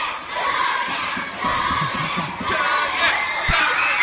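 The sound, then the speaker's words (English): A crowd of elementary school kids cheering and chanting "chug it" together, urging someone to chug water, a loud, dense wall of young voices shouting in rhythm, sustained throughout with rising bursts of excitement. “This is like an elementary school cheering for him to chug water, assuming that it's beer.”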